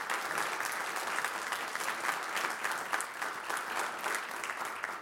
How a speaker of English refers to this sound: And so let's just give a round of applause for our current church board and what they do.